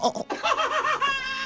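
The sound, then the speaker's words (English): A person imitates a goat's bleat: a wavering, quavering nasal cry with a trembling pulse, running for over a second and ending in a steadier held tone. “The goat sounds always get them.”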